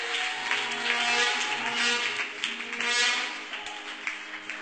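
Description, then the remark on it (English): An audience claps steadily for several seconds as a clap offering to the Lord, a dense, crackling wash of many hands with no clear beat, while sustained low musical tones hum underneath. “Give the Lord a clap hand offering there.”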